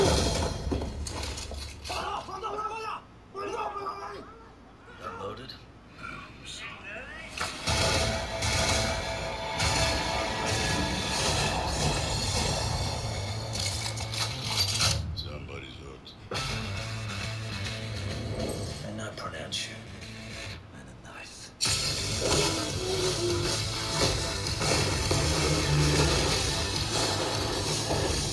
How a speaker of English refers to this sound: Dirt explosions, lovely.